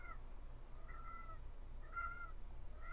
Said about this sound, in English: Cat. Over here. Kitty kitty.